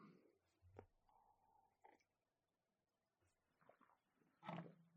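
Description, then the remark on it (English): Sipping of hot coffee: a few soft, short slurps spaced apart, then one louder, wetter sip near the end, with quiet mouth and cup noises between. “Sorry, taking a sip of coffee and trying to let you guys hear the sips.”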